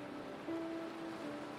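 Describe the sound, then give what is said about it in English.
Gentle ocean waves break softly and continuously on the shore of a beach, a steady hiss of surf with a low, sustained tone humming underneath. No voices are present. “And you can hear the beautiful sound of gentle waves breaking on the shore.”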